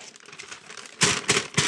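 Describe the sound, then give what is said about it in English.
Paper being pulled out of a right front pants pocket and crinkled, starting with soft rustling that turns into three loud, crackling bursts of crumpling in a quick rhythm, with no voices. “Go to my right front pocket.”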